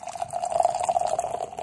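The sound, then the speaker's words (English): A hazy 8% double IPA by Transient Artisan Ales pouring steadily from a 16-ounce can into a glass, a continuous gurgling stream with a bright resonant tone, moderately loud, lasting under two seconds with no voices. “Oh, pour it over there. Not over the top.”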